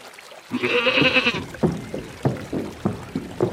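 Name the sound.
billy goat bleating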